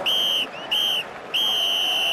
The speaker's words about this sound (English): Okay, so the whistle's just blown in and I don't even know where to start.